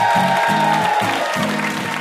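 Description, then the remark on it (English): A crowd applauds steadily and loudly for about two seconds for VIP guest Meg Wolitzer at the close of NPR's Ask Me Another show, a dense wash of clapping with a pulsing low musical beat playing underneath. “One last round of applause for our VIP, Meg Wolitzer.”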